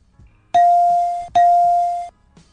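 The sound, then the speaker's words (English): A telephone rings twice, each a loud, steady electronic tone lasting under a second with a brief pause between. No one speaks. “Oh, now I gotta listen to ringing.”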